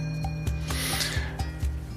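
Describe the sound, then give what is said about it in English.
Steady back-and-forth rasping of a saw cutting wood somewhere in the neighborhood, heard outside in front of a house in light wind, strokes repeating about four times a second, over a soft sustained tonal background. “Little wind, and someone is sawing in the neighborhood.”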